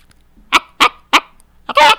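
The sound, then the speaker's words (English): A person imitates a chicken with three short, sharp clucks spaced evenly apart, followed by a longer, louder squawk, all clear with no other talking. “It's a chicken.”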